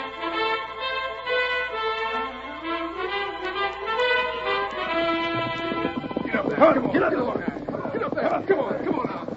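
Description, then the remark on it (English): Voices and tonal sounds fill the opening, then a rapid, loud clatter of a horse's hoofbeats takes over in the second half, galloping steadily away with riders aboard. “Come on. You can ride my horse with me.”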